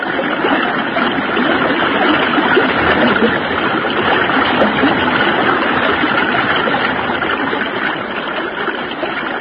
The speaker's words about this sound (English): When I let go of this limb, I'll let the current take us downstream. Then trust in God. Here we go.